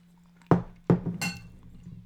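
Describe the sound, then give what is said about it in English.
A wine glass clinks: two sharp, hard taps in quick succession, then a brighter, high-pitched ringing chime that fades quickly, heard alone over a faint steady low hum. “Trying to get this glass of wine down before I end the podcast, because it's going to be a super short one and it's not going to be very interesting if I'm not at least buzzed.”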